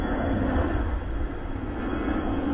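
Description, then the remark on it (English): An airplane roars steadily overhead, a continuous broad engine rumble with deep low-end weight that holds at an even loudness throughout, with no voices present. “You know, it probably won't be that loud in the recording because it is pretty good at catching local stuff. but the airplanes.”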